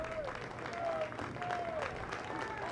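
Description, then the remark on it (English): A large crowd in the stands at a baseball game claps in a steady, staccato rhythm amid a busy murmur, with a few faint whistle-like tones drifting above it, in the ninth inning with the Raiders leading Belmont 3-1. “Staccato clapping in the stands.”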